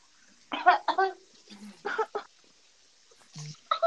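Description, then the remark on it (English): Several short, harsh cough-like bursts, bunched in pairs with brief pauses, sounding like a voice mimicking the coughing of someone who got sick rather than a natural fit. “Cough, cough, sick.”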